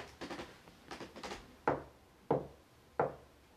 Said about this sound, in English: And then he saw a shadow outside of his door through the frosted glass. And there was a pause. And then there came a knock.